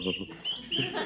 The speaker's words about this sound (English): Now listen to those little birds cheep.